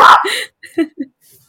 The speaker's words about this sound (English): There's the dog barking to help with everything. Hold on.